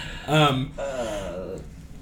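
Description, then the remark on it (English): A person yawns once, a loud breathy opening that trails into a long, sagging voiced sigh. No words are spoken. “And then you yawn. It's contagious.”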